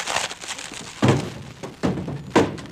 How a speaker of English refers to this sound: The phone booth. My girdle broke.